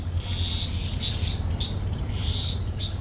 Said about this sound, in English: I can hear like some kind of amphibian thing. I don't know what that is. But definitely a frog. There's about eight species of frogs on site. I'm not a frog expert, but you can hear at least two croaking away at the moment.